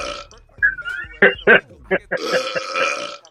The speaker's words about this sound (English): Hey, I feel like I got a burp, but I can't let it out.